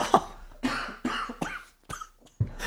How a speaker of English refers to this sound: Oh, he's coughing. He's coughing now.